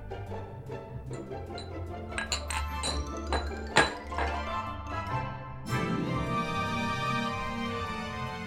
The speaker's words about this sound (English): And I almost knocked over the can. Oh, Jesus. Now I spilled.